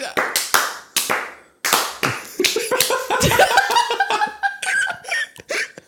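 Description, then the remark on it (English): Three sharp, scattered hand claps land off time, unevenly spaced, as mock audience applause, then give way to a burst of laughter and overlapping voices with a few more stray claps. “Three claps. Yeah, three. I'm okay with that. And they need to be off time.”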